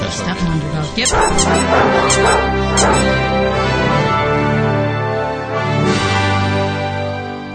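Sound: dog barking and whimpering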